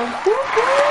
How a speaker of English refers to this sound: Now, those people in the studio audience are politely clapping as they begin to unfollow you.